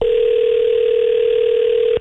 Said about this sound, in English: So I'm going to phone up my boyfriend.